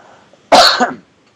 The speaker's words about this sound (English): I'm still sick, so my voice is going to sound a bit hoarse. I'm going to cough every once in a while. Hopefully I'll be able to do it in a time when there's no actual conversation going on.